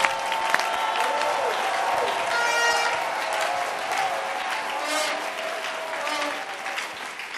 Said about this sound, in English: Give the Lord a clap and a shout and preach.